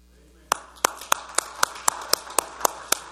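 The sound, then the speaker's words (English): A group claps hands in unison after a reading of Psalm 47 verse 1, 'Oh, clap your hands, all you peoples', about ten sharp, crisp claps at a steady, brisk beat, with no voices over them. “Oh, clap your hands, all you peoples.”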